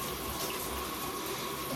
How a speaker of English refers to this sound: So every day, this is how I start my day. You ready? 6 minutes at 4:30 in the morning. Here it is. 6 minute ice shower.